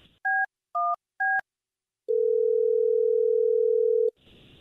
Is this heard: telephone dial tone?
yes